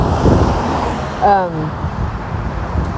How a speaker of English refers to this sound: Well, wait till these cars move. I usually don't cross the street when there's this much traffic.